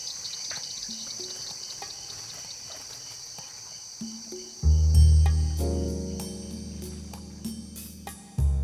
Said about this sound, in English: And those double sets of 7-inch dragon wings sound like a drone settling down on the microphone. So I had to stand there and shoo the dragonflies away so we could keep recording. It's a pretty neat sound though.